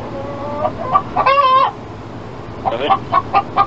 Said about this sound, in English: What do I do with the chicken then? I got 5 chickens in here.